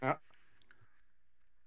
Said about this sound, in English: we have dice. We roll dice.